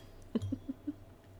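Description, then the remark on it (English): Drinking glasses clink together in a toast: one sharp tap followed by a few softer, quick taps, fairly quiet over a low background hum with no talking. “All right, cheers, ladies. Cheers.”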